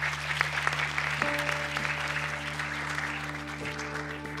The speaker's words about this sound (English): I think we'll all join in a round of applause for the panelists.